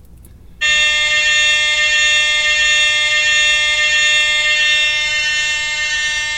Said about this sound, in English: It's going to be like an air horn for 10 hours.